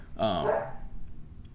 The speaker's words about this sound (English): So, anyways, let me close this out because this dog is barking.